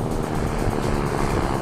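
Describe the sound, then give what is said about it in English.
A small seaplane's propeller engine drones steadily on a quick flight back to a lakeside home after several landings and takeoffs, a loud, continuous rumbling buzz with a low throbbing texture that holds even throughout, with no voices. “After a few more landings and takeoffs, it's a quick flight back”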